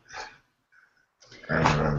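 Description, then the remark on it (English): A dog named Star growls and grumbles in short playful bursts, wanting to play: a brief gruff vocalization, a pause with a faint whine, then a louder, sustained rumbling growl. “No, the star started to make noise. She's mad. She wants to play.”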